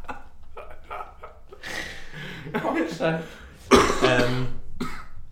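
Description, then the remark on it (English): A few harsh coughs and throat-clearing bursts, loud and abrupt, with brief pauses between them and a sharper, louder cough near the end. “Sorry, I coughed.”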